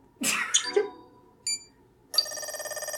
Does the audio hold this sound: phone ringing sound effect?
yes